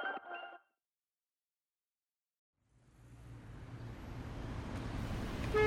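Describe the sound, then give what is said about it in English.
After a brief sound and a pause of silence, a low rumble of idling vehicles in stalled road traffic that is not moving fades in and steadily grows louder, with no voices. “This traffic is not moving, and I'm stuck.”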